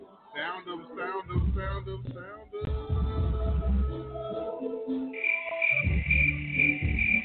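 A steady cricket chirping sound effect rings out over a low, rumbling bed of other sounds, with a sustained high-pitched trill dominating the final couple of seconds.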